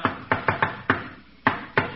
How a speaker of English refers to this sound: that's Sidney Monahan's knock. What's that four flusher doing here?